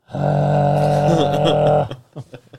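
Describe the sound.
A person imitates a werewolf with a long, loud, rasping growl lasting nearly two seconds, followed by a few short breathy grunts.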